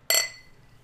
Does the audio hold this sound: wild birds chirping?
no